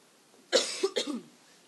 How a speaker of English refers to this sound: I'm just going to cough, hang on.